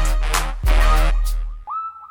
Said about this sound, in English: And even the whistle noises on the track, the whistle percussion, sounds like it's just buttons on a drum machine.